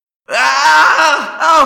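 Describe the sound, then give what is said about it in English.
A loud, strained human cry of pain, a harsh groaning scream with a wavering pitch that breaks briefly and then surges again, lasting well over a second with no words. “I screamed.”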